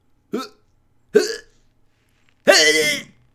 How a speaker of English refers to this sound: I need a burp.